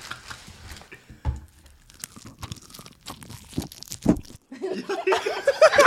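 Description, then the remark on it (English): Loud crunching of someone biting into a crispy fried chicken wing, a series of sharp brittle crackles with chewing and rustling between bites, ending in dense crackling noise. “See, you don't get the crunch with the flats.”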